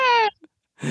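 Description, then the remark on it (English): A single short meow from Ash the cat with a slightly falling pitch, followed after a brief pause by a quick burst of human voice. “For the listeners, that's Ash the cat who's joining in.”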